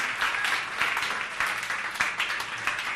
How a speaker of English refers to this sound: Clap your hands and bless the name of Jesus.